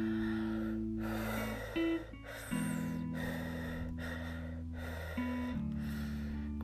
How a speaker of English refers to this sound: So I'm breathing, obviously. I don't know if I'm gonna breathe to 50. Obviously not, because I keep pausing to speak.